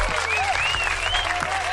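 A steady round of dense applause fills the short stretch at even loudness, with thin high gliding whistle-like tones drifting over the clapping.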